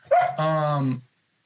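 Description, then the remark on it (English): A puppy lets out a sharp, high yip followed by a longer, drawn-out bark with a whiny tone, about a second in all, then silence. “And excuse my puppy.”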